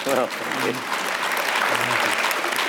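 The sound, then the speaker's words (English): Sustained applause from an audience fills the whole stretch, dense and steady, with a few voices faintly audible underneath the clapping. “Yes, well clapped there, ladies and gentlemen.”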